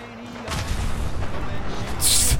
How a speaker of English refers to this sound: That explosion, this was perfect.